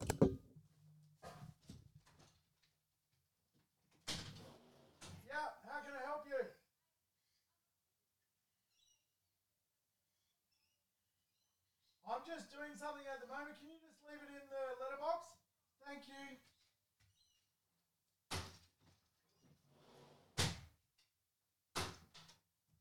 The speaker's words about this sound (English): Now, here's the dreaded doorbell. Hang on one sec.